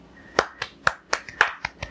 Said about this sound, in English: Little tennis clap.